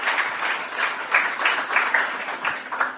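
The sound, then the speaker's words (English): An audience applauds steadily at the premiere screening of a short film, many hands clapping together in a dense, continuous patter at moderate volume, with no voices standing out. “let's give a round of applause to J.P. Leck, Elsewhere World, and The Should Not Be”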